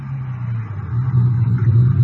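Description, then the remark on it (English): A car's engine rumbles low and steady, a deep continuous drone with slight swells as the vehicle eases along and pulls over on a highway at almost 4 a.m., about 20 minutes from Odessa, with no voices. “Guess I can stop any place on this highway.”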